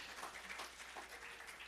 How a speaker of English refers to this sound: You clap, put some noise behind that clap. People get behind you.